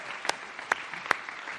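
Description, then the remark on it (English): An audience applauds the band at the end of a show: a dense, steady patter of many hands clapping, fairly soft overall, with three sharper individual claps popping out above the wash. No one speaks. “One more round of applause for our awesome band who did such a great job today.”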